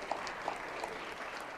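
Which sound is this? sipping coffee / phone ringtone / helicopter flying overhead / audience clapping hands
audience clapping hands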